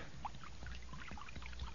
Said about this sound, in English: Well, I done found a jug of acid here. Now I'm gonna start pouring it now.